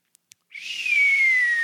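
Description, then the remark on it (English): Two tiny clicks, then a single loud, breathy human whistle that holds one high note and slowly slides downward in pitch for over a second, with no talking. “The sonic noise that we've been hearing about that needs to happen, it needs to be my whistle.”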